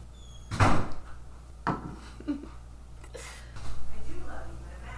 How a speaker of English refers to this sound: Why don't you just close the back slider doors in the sunroom until we're done?